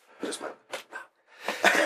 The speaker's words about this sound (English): Oh, damn, the first Bonktastic sneeze!